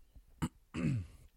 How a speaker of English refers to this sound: Are just coughed straight into the microphone. Because you weren't saying anything while I was coughing.